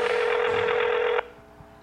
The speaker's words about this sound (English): Oh, that phone will ring all day.